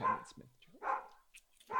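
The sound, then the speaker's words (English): Dogs, one of them named Humphrey, bark in a few sharp, irregular bursts spaced about a second apart, moderately loud, with no talking over them. “Oh my God, the dogs.”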